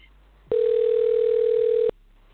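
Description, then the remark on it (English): A steady telephone dial tone, as guest Harold Lederman is dialed in by phone, sounds for about a second and a half, a single loud unbroken hum that starts and stops abruptly against a quiet background. “So I'm going to dial him in”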